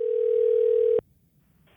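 A steady, unbroken telephone dial tone hums loudly for about a second at the start of a recorded customer phone call to a restaurant that Grubhub charged the restaurant for, then cuts off abruptly into near silence before a short burst of line noise at the end.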